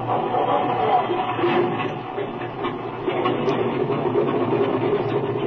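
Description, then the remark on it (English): A propeller airplane engine, already warmed up, runs at a steady, loud roar, a dense mechanical drone with a faint rhythmic chatter that holds constant throughout, with no voices. “The engine's been warmed up already.”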